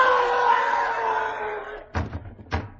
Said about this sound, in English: Sounded like someone falling against the front door. Oh, it's horrible.